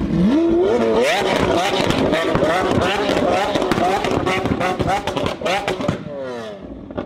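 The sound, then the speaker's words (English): A loud V12 Lamborghini Aventador exhaust note revs up sharply, then holds a harsh, raspy roar peppered with crackles and pops before winding down near the end; voices may be faintly mixed in. “And it's I call it a square wave exhaust note.”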